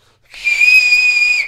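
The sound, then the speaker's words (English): A single loud, shrill whistle held for about a second, steady and piercing with a slight rise, made by a person imitating a two-finger whistle, with no talking over it. “There was a drunk girl who repeatedly whistled with her fingers.”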